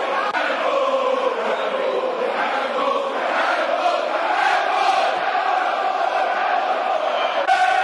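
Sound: football stadium crowd cheering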